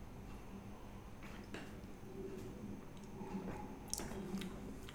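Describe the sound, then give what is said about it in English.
Quiet sipping of an orange-flavoured beer from a glass during a tasting, with a few soft wet mouth sounds and small clicks of glass against the lips; nobody speaks. “Well, going to go in for the sip.”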